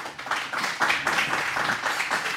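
An audience applauds in a steady, dense round of clapping that holds at an even loudness throughout, with no voices over it.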